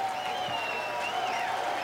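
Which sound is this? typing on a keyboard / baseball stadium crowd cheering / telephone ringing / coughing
baseball stadium crowd cheering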